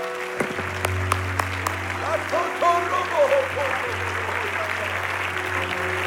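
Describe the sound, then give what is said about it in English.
A church audience claps their hands in a sustained, dense wash of applause, with sharp individual claps near the start and indistinct voices calling out over a steady low hum. “Oh, come on, would you clap your hands a little louder right now?”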